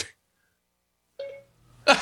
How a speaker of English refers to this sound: My phone went ding. As it should. As well it should.